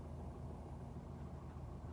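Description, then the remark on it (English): A steady, muffled low rumble fills the space, like sitting inside a car with the engine idling, constant and even throughout with no voices. “But we're going to start in the car.”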